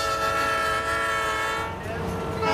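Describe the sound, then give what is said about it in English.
A 75-car, 6,000-ton freight train over a mile long, traveling over 50 mph at night near Bryant, Arkansas, on its run to Little Rock, blares its horn during an emergency stop in one long sustained chord over the low rumble of the passing train, dipping slightly before swelling again at the end. “4 hours later, a 75-car, 6,000-ton cargo train made its regular night run to Little Rock.”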